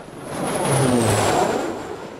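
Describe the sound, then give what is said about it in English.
An airplane engine roars past, swelling to a loud peak mid-clip with a whining tone that drops in pitch, then easing off slightly as it moves away. No voices. “Planes!”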